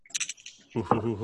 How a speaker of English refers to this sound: And that's 3d6. My fancy new dice.